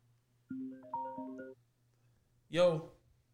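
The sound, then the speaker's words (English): A short electronic phone ringtone plays a few steady melodic tones for about a second, then stops; a moment later a man lets out a brief, loud exclamation. “Phone caller. Oh shit! Hold on.”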